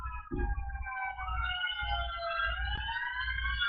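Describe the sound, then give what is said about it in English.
Emergency vehicle sirens wail steadily in the background, several overlapping tones sliding slowly up and down, with low rumbling traffic noise beneath and no one speaking. “Don't mind me, the sirens that are in my background.”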